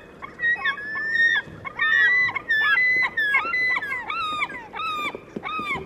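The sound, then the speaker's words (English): Loud, repeated cries of slaty-backed gulls on a seashore in Japan ring out in quick succession, several birds calling over one another in harsh, wailing bursts, with a steady low rumble of surf or wind underneath. “The cries of these slaty-backed gulls in Japan are like what many of us might consider the iconic sound of gulls on a seashore.”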